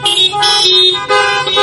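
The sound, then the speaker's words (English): A loud car horn honks in a few sustained blasts, with brief dips between them and no voices, as a signal for having found Matthew 6:10 in the Bible. “And when you get there in your word, in your Bible, just honk your horn.”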